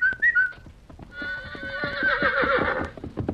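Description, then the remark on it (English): A boy gives a couple of quick whistle notes, then the horse White Star trots to the barrier in a hidden valley with steady clip-clopping hoofbeats and lets out a long, loud, wavering whinny over the hooves. “White Star was strong again and trotted to the barrier when he heard the boy's whistle.”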